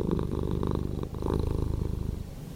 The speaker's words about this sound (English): It is a purring cat. That is the nicest sound, the happiest sound in the world, according to the majority of people. And it's nice.